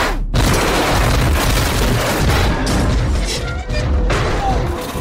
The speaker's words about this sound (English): He's just like looking down the road, and there's this red car coming down the road, and all of a sudden it just, boom, it just flips.